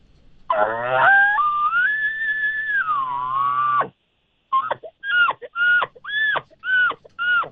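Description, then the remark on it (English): An imitated elk bugle, given as a sample of the calls heard at an elk calling competition. It is a long, high, whistling squeal lasting about three seconds, sliding up then down, followed by a brief pause and six or so short, grunting chuckle notes in a choppy rhythm. “when we were in Salt Lake, we hosted the elk calling competition there, and we talked to several people that were at Salt Lake, say, hey, we're coming to the event.”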